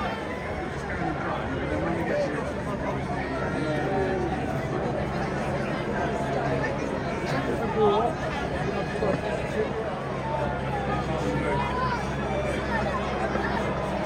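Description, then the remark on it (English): A dense, steady hubbub of crowd chatter fills the scene from start to finish as a crowd surrounds a parade bus moving at barely walking pace, many voices blending together over a low, continuous engine-like rumble, with a BBC helicopter above. “The bus is still by the turf and the crowd's looking at that footage are just amazing, surrounding the bus.”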